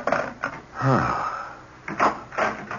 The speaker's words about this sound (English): Oh, I thought I heard someone come in the back door. I wanted to make sure it was you.